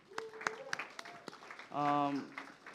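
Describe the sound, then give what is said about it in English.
A church audience gives itself a round of applause: scattered, uneven handclaps start up, joined midway by a brief loud cheer or whoop before the sparse clapping continues. “If you guys don't mind, could you give yourself a round of applause?”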